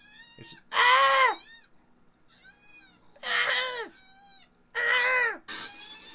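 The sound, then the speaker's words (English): A loud koala screams as it is evicted from a tree: three loud, harsh, wavering wails rich in harmonics, with softer, higher whining calls in between. A human voice seems to imitate some of the cries. “How about this one? Koala screams.”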